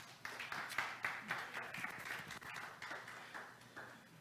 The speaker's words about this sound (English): Somebody could, if you could give God a hand clap.